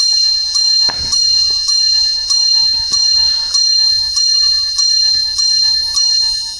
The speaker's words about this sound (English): Yeah, I was going to say 11 chimes represent. Welcome to Divorce Mecca. 11 chimes represent, correct, Divorce Mecca, Los Angeles.